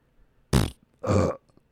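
Two loud, close burps in quick succession, the first short and sharp, the second longer and more drawn out, with nothing else around them.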